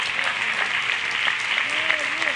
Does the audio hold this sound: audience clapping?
yes